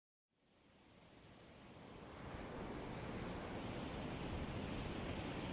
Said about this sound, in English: meditation is about 10 minutes long, with the sound of the Pacific Ocean in the background that I recorded a couple of weeks ago on a trip to the beach. The sounds of the ocean go on for a while after the meditation to help you fall deeply asleep.